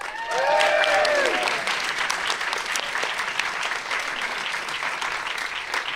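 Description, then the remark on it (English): A large audience claps steadily for several seconds, a dense wash of hand claps that stays loud throughout, with a few whoops and cheers rising at the start. “You can applaud yourselves, because thank you guys for coming.”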